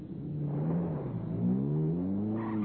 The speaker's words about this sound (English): And then the traffic block broke, and the Invicta slid forward.